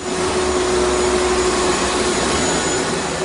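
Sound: vacuum cleaner sound effect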